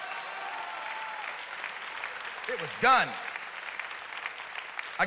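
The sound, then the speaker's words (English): An audience claps steadily throughout, a dense, continuous patter of applause, while a man's voice briefly speaks over it partway through. “Come on, somebody clap like prayer shifts the atmosphere.”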